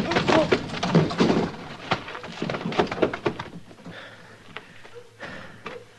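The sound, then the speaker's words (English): A sharp punch lands as Mr. Dillon hits a drunk man holding a gun, followed by a heavy body thudding to the ground and a few scuffling knocks, fairly loud, then quieter rustling. “Did you knock him out? Well, I hit him hard enough.”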